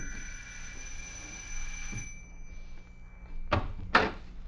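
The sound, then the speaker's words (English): A house doorbell, rung by police who arrived in a police car, rings with a sustained, bright tone that fades after about two seconds, followed by two sharp, loud bursts close together, with no talking. “10 minutes later, a police car raced up to the house and the doorbell rang.”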